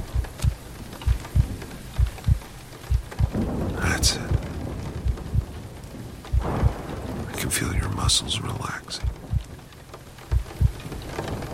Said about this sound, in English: So thick that it's shutting out the light, the rain, the booms of thunder.